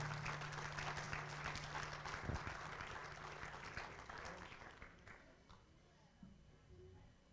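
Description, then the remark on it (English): An audience claps steadily for the pastors and their wives in a dense, crackling round of applause that gradually thins out toward the end, with a low hum running underneath. “Yeah, y'all give them a round of applause.”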